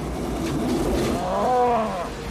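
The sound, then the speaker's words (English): A single drawn-out cow moo rises and falls over a steady roar of wind and rumbling noise, fairly loud, with no one talking; a cow in a tornado scene from a 1996 storm-chasing movie. “Cow.”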